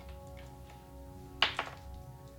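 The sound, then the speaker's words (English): Dice are rolled, landing with two quick hard clacks in close succession over a low steady background hum, with no talking during the throw. “Roll your dice.”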